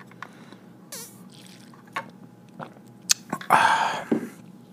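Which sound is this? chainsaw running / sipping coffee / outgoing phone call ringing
sipping coffee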